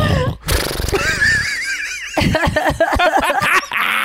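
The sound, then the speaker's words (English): A person imitates a horse's neigh with a wavering, whinnying voice that rises and trills, followed by a burst of choppy laughter-like snorts, loud. “You've never done a horse?”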